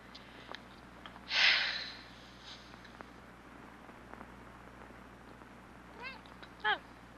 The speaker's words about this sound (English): Oh. Hello, cat. Do we have a cat?